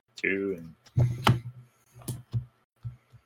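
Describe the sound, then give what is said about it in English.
A short hum of a voice, then a handful of irregular clicks and taps of keys being typed on a computer keyboard to enter a dice roll expression, at a moderate level with small pauses between them. “So you can click on the d6s 3 times, and then you can type in, like, plus...”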